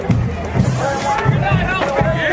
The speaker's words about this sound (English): In this video, you can hear a crowd of several dozen charge a single man standing in front of the van. They mace him repeatedly and beat his arms and legs with batons.